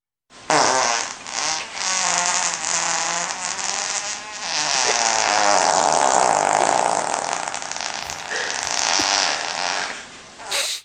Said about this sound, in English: I've got another fart for you.